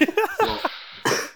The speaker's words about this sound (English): I hope I can keep this cough in check, man. Maybe just hold your breath.